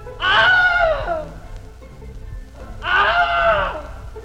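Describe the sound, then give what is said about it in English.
Two loud, strained screams of pain about two seconds apart, each a harsh, harmonically rich cry that rises briefly and then falls in pitch: the Wilhelm scream, a film sound effect first used in 1951. No one speaks. “And we've actually used these, all three of these last ones, as sort of the official Wilhelm.”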